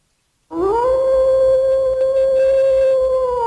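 A single wolf howl swoops upward and then holds a long, steady, mournful note, loud, with no other sounds around it.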